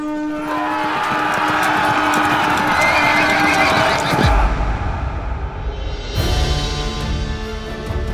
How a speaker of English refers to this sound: Then he kicks his horse and starts his final charge.